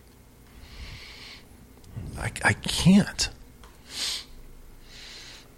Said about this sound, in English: Take a chip and smell it. Oh, there we go. Did you get a good sniff yeah, of it? Yeah.